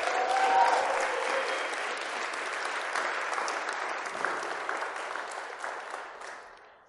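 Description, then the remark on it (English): An audience gives a man a round of applause, clapping steadily for several seconds, a dense, even wash of applause that holds at a strong level before gradually thinning and fading out at the end. “Why don't you give him a round of applause? That was awesome.”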